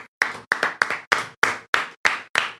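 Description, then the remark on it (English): A single pair of hands claps about eight or nine times in a quick, fairly steady rhythm, each clap sharp, with no voices underneath. “No clapping on your end there, dude.”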